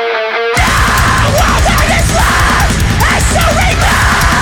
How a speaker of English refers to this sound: Well, I mean, it's a good texture. It sounds standard to me. It's just a standard, like ride bell blast beat.